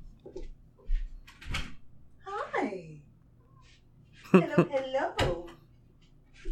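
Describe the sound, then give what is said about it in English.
A door opens with a few sharp knocks and rattling clunks, alongside a drawn-out, falling vocal sound and brief murmured talk, as a pet named Boomer is let in. “I got a Flurkin at the door. I'll be right back.”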